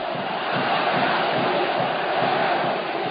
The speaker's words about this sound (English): The crowds may have been cheering